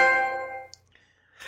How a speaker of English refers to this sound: My e-penis rose to dominance when I heard that sweet chime of my first trophy, and I shouted, trophy, yo!